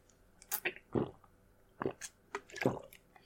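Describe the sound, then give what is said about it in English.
Wet gulping as someone takes a long drink of water from a cup, four or five separate swallows spaced unevenly with short quiet gaps between them, with no talking. “He takes a long drink of water from a cup you didn't know he had, with water you don't know where he got.”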